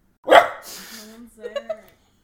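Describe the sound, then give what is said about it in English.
A dog gives one sharp, loud bark, followed by a short stretch of softer, higher yelping or murmuring sounds before it fades out. “Couldn't be an episode without the dogs.”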